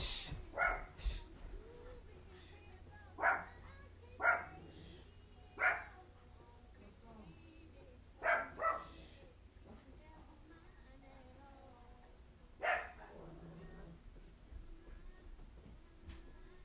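A dog barks in short, sharp single yaps, about eight of them spaced irregularly with pauses between, over a steady low background hum.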